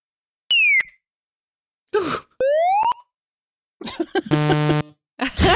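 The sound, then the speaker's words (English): Crude computer-synthesized animal sounds that ChatGPT created with JavaScript and the web sound API: a short falling electronic chirp for a bird, then noise bursts, a rising buzzy sweep for a cat, and a harsh buzzing blare for a dog. No speech. “I also did ask ChatGPT to create sounds, and I asked it to use JavaScript and the web sound API to create animal sounds, and it provided the following.”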